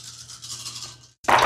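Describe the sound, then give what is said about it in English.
A soft, steady rattling like dice being shaken for about a second, a brief pause, then a loud burst of clattering as ten dice are thrown and tumble. “Godwin's going to roll 10 dice. Roll those 10 dice.”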